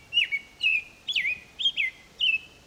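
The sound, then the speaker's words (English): An American robin sings a series of short, clear whistled phrases, about five in quick succession with brief pauses between them, bright against a quiet background. “The American robin rates as one of our best-known birds.”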